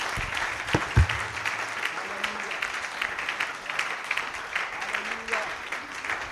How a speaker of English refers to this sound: Clap your hand together for Jesus. Hallelujah.